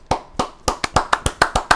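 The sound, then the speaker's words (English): A single pair of hands claps about nine times in a steady rhythm that quickens slightly, each clap sharp and bright with a short decay, and no talking over it. “I think we should just give him an applause just because it's been such a long time.”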